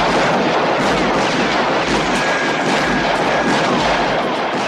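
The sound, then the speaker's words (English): Loud, dense gunfire blasting at thrown old crockery targets, dishes shattered into ceramic fragments, the shots running together into a steady, roaring wash of noise for several seconds, with no voices. “And as the afternoon drew on, more and more old crockery was rendered into ceramic fragments.”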